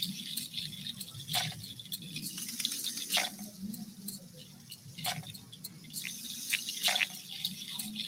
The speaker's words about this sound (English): Put our froggies in the stream here. And he better watch out from the rattlesnake.